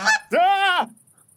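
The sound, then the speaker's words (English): A single loud goose honk, preceded by a short raspy squawk, a brassy drawn-out call of about half a second that cuts off sharply, with no talking. “Where did that goose get that cider from?”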